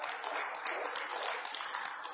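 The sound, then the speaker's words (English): A crowd, invited by the speaker to clap, claps together in steady, dense applause, many hands blending into a continuous rattling wash that stays fairly even throughout, with no voices standing out. “Go ahead and clap if you want to.”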